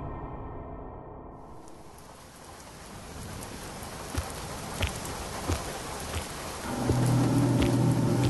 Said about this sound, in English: The city announces our arrival with the pouring rain. From its highest levels, the walls glisten beneath the downpour, making everything look clean and smooth.